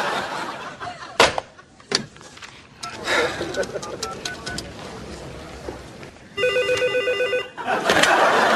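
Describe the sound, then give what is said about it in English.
A telephone rings once in a single trilling burst of about a second, fairly loud, amid busy background noise and scattered knocks, with voices present in the scene. “I'm sorry, I've been answering the phone my whole life.”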